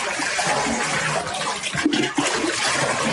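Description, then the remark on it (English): Floodwater rushes and pours steadily into every room of a house, a dense churning flow that never lets up, with gurgling surges partway through and no voices. “The water poured into every room of this house. It just keeps coming in.”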